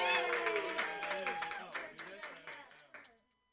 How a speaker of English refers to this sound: Your next comedian, he's a hilarious guy. He hasn't done comedy in 75 days, so we're going to see what happens. Put your hands together, everybody.